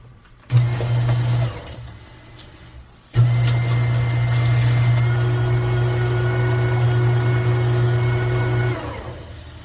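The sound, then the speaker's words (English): A paper shredder shreds a water bill in two bursts, a brief one and then a long steady grinding drone of about six seconds, with the quieter hum of its fan in between and no talking. “So when it shreds something, it shreds enough.”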